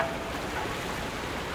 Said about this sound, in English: Waves lap against a creaking wharf while the Seabus ferry crosses Vancouver Harbor. Passengers shuttle between the city of North Vancouver and downtown. … captured these sounds for ….